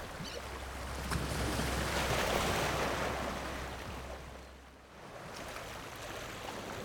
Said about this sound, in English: Hear the slow, gentle roll of the waves.